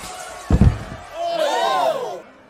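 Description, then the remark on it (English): A single heavy punch lands with a sharp thud, knocking a man unconscious, followed by a drawn-out vocal groan or exclamation as the blow connects. “You knocked him unconscious!”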